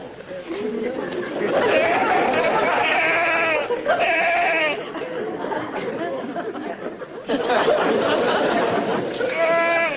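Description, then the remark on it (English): A mad goat in a jail cell bleats loudly and repeatedly, its quavering cries overlapping in a near-continuous run, with a murmur of people talking underneath. “That's a mad goat.”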